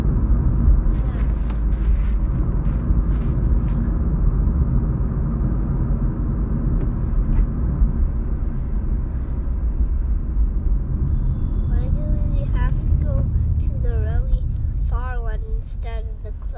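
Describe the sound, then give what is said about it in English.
A steady, loud low rumble of a car driving to a restaurant fills the whole recording, engine and road noise droning without a break, with a voice briefly heard over it near the end. “It takes a little while because it's pretty far away, but it's much quicker with a car than if we walked.”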